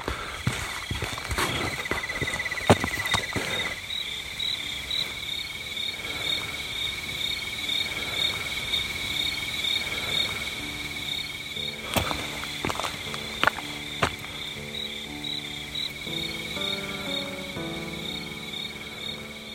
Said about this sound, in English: Let you kind of listen to what I'm hearing, hear all the bugs and stuff making noise and hearing my footsteps and pretty much what I've been hearing for the last 18 hours or so.